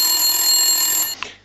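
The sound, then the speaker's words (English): A mechanical egg timer rings in a steady, shrill metallic burst for just over a second, then cuts off abruptly, leaving one faint ping as it fades. No one speaks. “I like this egg timer.”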